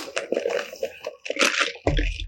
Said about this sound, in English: We have our iced coffee. Let me take a sip.